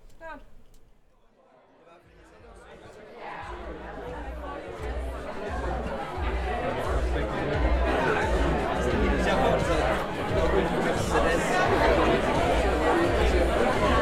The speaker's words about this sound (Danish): Imens publikum forsyner sig i baren og forventningsfuldt snakker sammen i salen